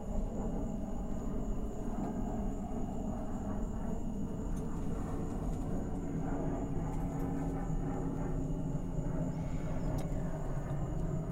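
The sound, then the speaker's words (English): A steady, broad engine roar fills the air, like an airplane passing overhead, holding a constant low rumble for the whole stretch with no voices. “And there's an airplane. Let's just wait for that one.”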